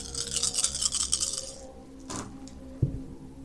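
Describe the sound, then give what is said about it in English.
A handful of eight dice, thrown for a comm tech roll in a game, rattles briskly for about a second and a half, then a couple of sharp clattering knocks follow as they land and settle. No one speaks. “Okay, so it's 8 dice.”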